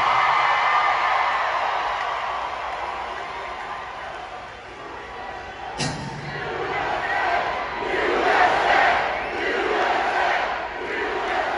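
A large concert crowd cheers and shouts continuously, a dense roar with scattered yells; a sharp burst near the middle, then the noise swells again in rolling waves.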